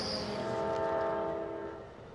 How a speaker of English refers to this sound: Just about every day, I hear the rumble of trains throughout West Glacier, whether I'm inside or out. The sound of trains punctuate a lot of daily life in Glacier.